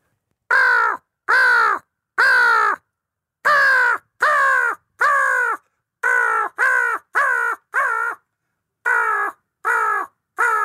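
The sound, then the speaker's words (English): A person imitates a crow with loud, harsh caws, about thirteen in short bursts of three or four separated by brief pauses, with no other talking. “Better at crow than I am. Well, I want to hear your owl and your crow.”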